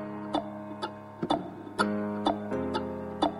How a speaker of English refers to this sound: Ooh, bit of ticking clock there. Can you name that song? Okay, your time is up.